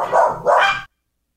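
Two quick, loud barks from a dog, the second following right after the first, then abrupt silence.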